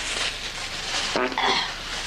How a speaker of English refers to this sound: I just farted in a bag.